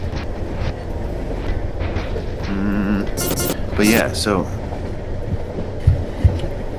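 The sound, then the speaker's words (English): A steady low rumble of a train rolling on rails fills the background, with brief clacks and a short high squeal, while a person speaks over it. “And I'm gonna get some like Starbucks sound or some like coffee shop sound, and then I'm gonna get train sound and run them both.”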